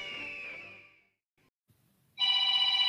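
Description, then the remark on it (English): A telephone rings loudly with a bright, trilling bell, fades out, pauses for about a second of near silence, then bursts into a second strong, steady ring. “Prophetic briefing, and you're going to want to stay tuned once that phone stops ringing.”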